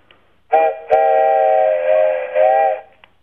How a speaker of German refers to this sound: Das war eine Dampflok. Das war eine Dampflok.